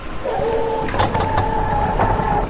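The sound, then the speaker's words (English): A motorized mechanism whirs steadily for a couple of seconds with a few soft clicks as an automatic refrigerator door is activated and pushed open, in a kitchen made easier to use for elderly people. Moderately loud, with no voices. “But if you notice, we have, if we activate the fridge, refrigerator, open, door open.”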